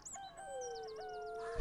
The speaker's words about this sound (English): Like birds, random birds tweeting 1 hour. Random birds.